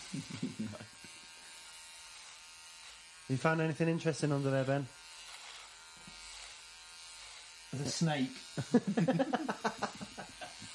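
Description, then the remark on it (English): An electric hair trimmer buzzes steadily throughout as a beard is trimmed, a continuous high-pitched whine, while people talk over it in short bursts. “Trimming the outback there.”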